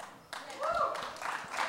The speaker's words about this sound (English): People just clapping for the movie.